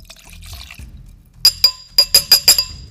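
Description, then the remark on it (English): Rey Campero Espadín mezcal, 48.5% alcohol, glugs and trickles into a glass, about a triple shot, followed by a quick run of bright clinks as glass taps against glass, with no talking. “I'm cracking this bitch open. Pouring it in the glass.”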